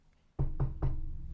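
Three firm knocks on a door in quick, even succession, fairly loud, each with a low wooden thud and a short resonant tail, with no voices.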